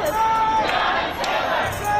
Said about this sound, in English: Through this year, crowds have been chanting her name.